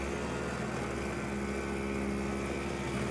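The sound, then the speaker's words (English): A snowblower runs steadily outdoors on a freezing, icy day, a loud, rough mechanical roar with a low hum and a gritty hiss, as someone learning to use it blows snow onto a car on the driveway; no speech. “There's me learning how to use a snowblower.”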